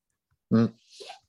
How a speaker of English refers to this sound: Taking a sip of my coffee.